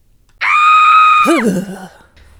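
A loud, sustained high-pitched scream holds steady for about a second, then breaks into a lower, wavering groan that trails off; a short vocal sound-effect sting with no speech.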